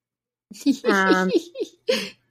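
A toddler trying to get into the room makes a few short, high-pitched vocal bursts, babbling and giggly squeals, over about two seconds, clear with brief pauses between them.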